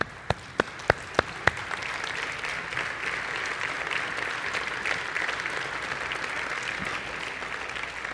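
A standing audience breaks into applause as a clap offering to the Lord: a handful of separate sharp claps at the start quickly swell into steady, dense clapping that holds at an even level to the end, with no voices.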